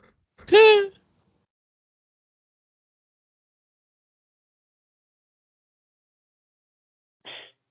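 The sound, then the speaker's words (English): Someone gives a single short, squealing oink in imitation of a pig. A long silence follows, then a brief, faint breathy noise near the end. “I like pigs. Oink, oink.”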